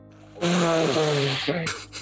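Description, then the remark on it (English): A loud, drawn-out sneeze: a long voiced wind-up that slides down in pitch, then two sharp hissing bursts of breath at the end. No one talks over it. “Bless you”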